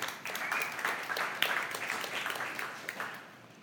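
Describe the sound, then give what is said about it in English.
Uneven applause from a crowd, a scattering of claps at mixed pace rather than a full ovation, moderately loud at first and tapering off toward the end. “Some people are clapping, some aren't.”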